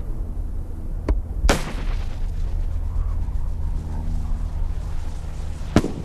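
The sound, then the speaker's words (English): Sharp bird-scaring shots crack out over a steady low rumble during a bird-scaring operation by airport rescue vehicle Rescue 2 on runway 30: three sudden bangs spaced irregularly, the second the loudest with a brief trailing echo. “Rescue 2 is at the approach to taxi 12, requesting clearance onto runway 30 to carry out a bird scaling operation.”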